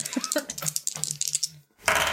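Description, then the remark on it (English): Percentile dice, used in place of a d10, clatter across a tabletop in a quick run of small, hard clicks and taps, then a short pause before a louder burst of rattling noise. “Why can't I find a d10? We have so many dice. I have to use a percentage dice, which are so confusing.”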